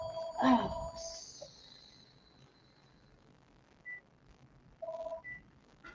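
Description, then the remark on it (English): A telephone rings in two short electronic bursts several seconds apart, with a few brief beeps in between, over a quiet background. “I usually never get phone calls.”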